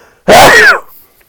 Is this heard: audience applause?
no